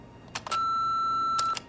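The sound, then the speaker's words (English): A single steady electronic answering-machine beep follows a family's recorded greeting asking callers to leave a message; it holds one pitch for about a second, bracketed by a few sharp mechanical clicks before and after it. No one speaks. “Please record your message after the beep, and we'll call you back.”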